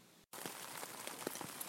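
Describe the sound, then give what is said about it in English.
Steady rain patters on the taut fabric of a tent at about 4:15 in the morning, a dense hiss broken by scattered sharper drops, after a brief moment of silence at the start. No voices. “So it's raining in my tent.”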